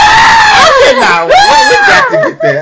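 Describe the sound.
A voice imitates the high-pitched scream of Ginger, the waitress character at Fantasia who often screams, loud, with shrill wavering bursts that rise and fall for a few seconds before trailing off.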